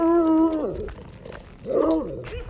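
A black husky dog, excited and wagging its tail, lets out two drawn-out, whiny howling calls, each holding a steady pitch before sliding downward, separated by a brief pause.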